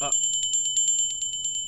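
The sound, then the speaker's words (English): A brass hand bell of the kind used to call a maid, shaken rapidly, its bright, high ringing tones sustained under a quick, steady clatter of repeated strikes, loud for the whole moment. “This one is a brass bell, except it's like one of those where you want like a maid, and you're just like, maid?”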